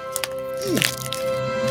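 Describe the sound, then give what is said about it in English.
Bubble wrap being pulled off a heavily wrapped package received in the mail: a short burst of sharp crackling and popping in the middle, over a steady low hum, with softer rustles before and after. “Oh, it's all bubble tape.”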